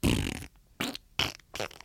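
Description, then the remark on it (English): A voice imitates loud internal stomach farts from holding in a poop, made with the mouth: one long, juicy blast followed by three shorter sputtering bursts in a steady rhythm, fairly loud. “I was traumatized in high school from trying to hold in a poop one time and my internal farts being so loud that everybody else can hear it.”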